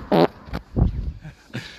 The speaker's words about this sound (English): I'm just walking on a main road, so you're going to have to bear with me a little bit. I've also got a fart to do, so I might do that into the microphone. So you'll listen to this.